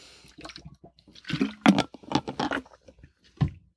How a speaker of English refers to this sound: And I feel I have to get another sip here. I talked for a long time.